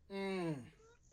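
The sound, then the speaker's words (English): A single meow from the cat Damien, a clear, drawn-out cry whose pitch slides downward and fades within about half a second, heard alone without any talking. “That is totally Damien in the background.”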